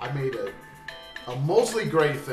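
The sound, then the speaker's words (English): A phone alarm rings with a steady, high electronic tone, briefly heard on its own in a pause while a person talks over it before and after. “That's my alarm telling me I got to.”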